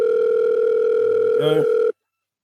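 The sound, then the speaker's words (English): A telephone ringing tone on a call to a nine-year-old girl: one steady, mid-pitched electronic tone holds for about two seconds, with a brief warbling blip near the end, then cuts off abruptly. “I'm going to call her quickly, if you guys don't mind.”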